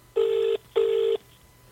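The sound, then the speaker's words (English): A phone ringing out on the line as a man is called back: a double burst of steady electronic ring tone, two short pulses separated by a brief gap, clear and fairly loud with nobody speaking. “I really wish he'd picked up, phone him back to help to pick up with that in the background.”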